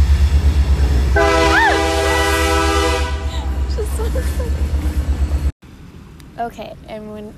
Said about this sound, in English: Okay, we're back. The train passed. Everything is quiet again.